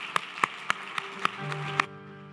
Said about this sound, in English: Let's applaud this day, okay?